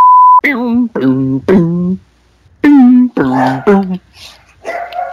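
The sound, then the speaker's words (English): A short electronic beep, then a dog barks in two quick sets of three, loud, each bark sharp and yelping, with fainter sounds trailing off at the end. “Bark, bark, bark. Bark, bark, bark.”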